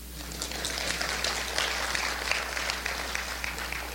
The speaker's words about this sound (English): You can clap.